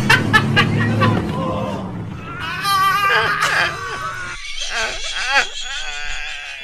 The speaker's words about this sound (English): He fucking really had That moan